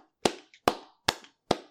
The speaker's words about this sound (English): I want to clap like Link from Super Smash Brothers.